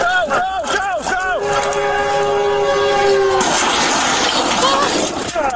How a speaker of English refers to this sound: Imagine you crash your little plane on the train tracks, and then there's a train coming up behind you, and you're sitting there alive. You survived. You survived a plane crash, and here comes a train.